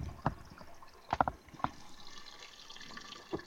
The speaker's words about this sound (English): All right, our bacon's frying up here. I can hear it. Well, y'all hear it sizzling?